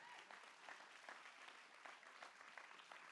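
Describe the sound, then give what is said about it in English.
An audience claps their hands for the Lord in sustained applause, a dense, steady patter of many overlapping claps with faint rhythmic accents, continuing without pause and with no voices rising above it. “Somebody give the Lord a big old hand clap.”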